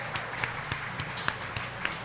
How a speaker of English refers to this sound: Come on up here, Sunny. Give Sunny a round of applause, please.